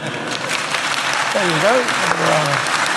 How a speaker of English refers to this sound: There you go. And I was very... there's more round of applause than anything you and I have said.